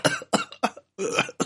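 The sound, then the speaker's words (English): A loud fit of harsh coughing, several quick bursts in a row with a brief pause, as someone sputters after choking on coffee. “I was about to be a fire breathing coffee spewing dragon there for a second.”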